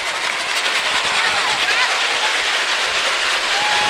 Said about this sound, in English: Here comes the rain.